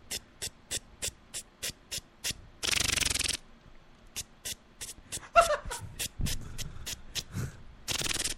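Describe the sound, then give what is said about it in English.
A voice imitates a lawn sprinkler: steady, evenly spaced sharp ticks, broken by a long breathy hiss, then more ticking, some rougher mouth noises and a final hiss. “Can you do a sprinkler sound now?”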